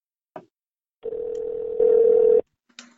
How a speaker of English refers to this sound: His phone dropped out again.